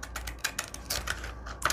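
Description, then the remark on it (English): Cheap scissors snip through thick paper in a quick run of crisp, crunchy cuts, fairly quiet, with no voices. “And I think I can take my cheapo scissors because this is thicker. And I'm going to cut with the cheapo scissors.”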